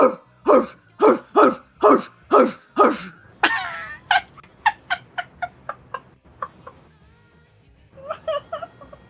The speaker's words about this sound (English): There's a dog barking insanely behind one of the doors. Like, furiously barking.